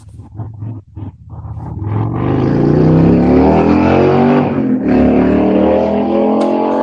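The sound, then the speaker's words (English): A motorcycle engine revs up outside a window, starting with sputtering bursts then swelling into a loud, sustained roar that holds steady for several seconds, harmonics rising and falling as it accelerates. “I extremely apologize for that motorcycle outside my window.”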